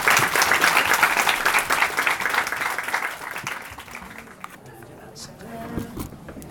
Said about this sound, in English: So could we have a round of applause, please, for the interview?